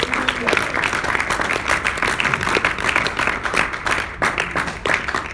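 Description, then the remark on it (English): An audience claps their hands in praise to the Lord in steady, dense applause, many overlapping sharp claps forming a loud continuous patter, with crowd voices mixed underneath. “Would you clap your hands in the Lord praise one more God.”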